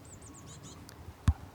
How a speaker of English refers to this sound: Can you hear those bird sounds? Hello, Robin. Hello. Okay, I'm going to leave him to it. He's still looking at me. I love hearing the birds tweet in these hedgerows.